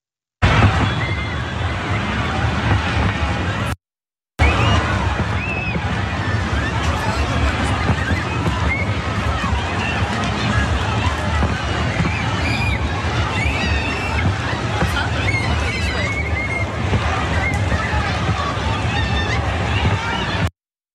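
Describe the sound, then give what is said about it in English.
A crowd flees in panic at a 4th of July fireworks display in Spring Garden after an armed suspect wounded two police officers, a dense, steady roar of many overlapping voices and shouts with constant background noise, broken by one brief silent gap early on. “Here's a scene of the crowd fleeing.”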